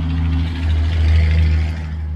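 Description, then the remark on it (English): A big truck rumbles past, its deep, steady engine drone swelling slightly in the middle before easing off, loud with no talking over it. “Hold on. Big truck.”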